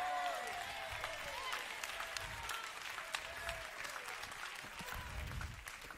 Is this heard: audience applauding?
yes